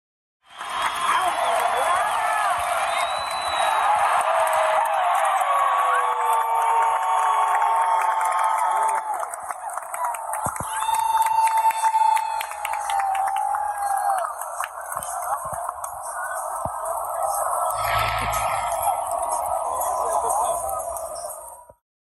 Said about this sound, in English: But, you know, people are standing for that last pitch. They know McGee's got two strikes. And, you know, the crowd is ready to just cheer on the win.